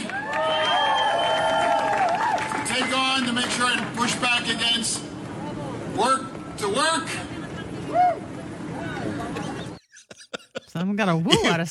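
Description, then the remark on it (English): A single audience member lets out a rising, drawn-out "woo" over a murmuring crowd, with scattered voices and coughs around it before the room briefly quiets. “Someone got a woo out of somebody after he said that. Yeah, one guy said woo.”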